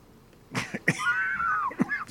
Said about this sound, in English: Matter of fact, I was going to run out a couple of seconds and cough. So there you go.